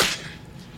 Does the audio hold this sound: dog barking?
no